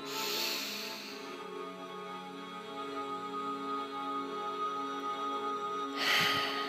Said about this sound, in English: And then breathing out. Breathe in nice and deep. And breathe out. One more time.